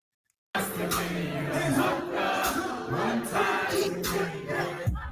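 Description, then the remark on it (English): After a brief silence, a played recording of a concert crowd at the start of a show begins abruptly and holds steady. It is a dense, continuous roar of many voices with scattered shouts, fairly loud and unbroken for several seconds. “The crowd seems dead.”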